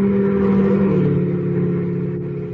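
A car engine hums loudly, its pitch dropping slightly as it passes, then fades gradually as the vehicle moves away. No voices are heard.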